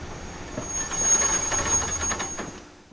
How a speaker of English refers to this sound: Finally, the train stops.